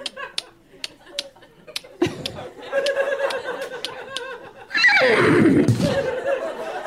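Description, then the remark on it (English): A person vocally imitates a horse's whinny, a loud, wavering, breathy neigh with fluttering pitch that swells and trails off, preceded by short clicking and snorting noises. “I do a great horse.”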